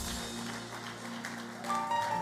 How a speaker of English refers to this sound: Rise up on your feet and give the Lord a clap of praise.